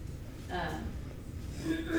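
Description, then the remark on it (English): Polly, an antsy pet dog pitter-pattering about, breathes heavily and snorts in soft, breathy bursts of noise over a low background rumble, fairly quiet throughout, with the puffs recurring irregularly. “She's like pitter-pattering. She's breathing.”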